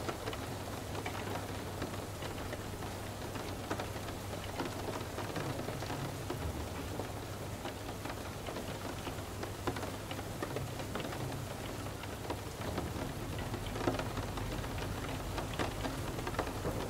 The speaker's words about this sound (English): Each surface outside creates a slightly different sound as the white noise of the rain clears the air.